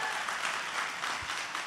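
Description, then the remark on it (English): Steady audience applause, a dense wash of many hands clapping at once, sustained and fairly loud throughout with no individual claps standing out and no voices over it. “Make a round of applause real quick.”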